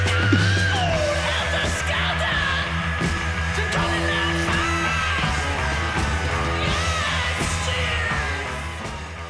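A raw, high-pitched rock vocal scream wails over loud, dense band music with pounding drums and guitars, the shrieking voice bending and sustaining throughout at full volume.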